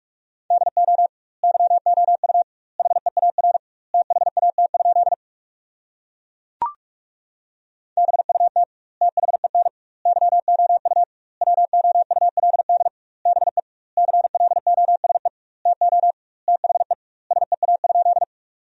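Rapid Morse code at 45 words per minute with double word spacing, sending sentences built from the 300 most common words, in a steady mid-pitched tone, short dits and longer dahs grouped into words with wide gaps between them, plus a single sharp click partway through. No voices.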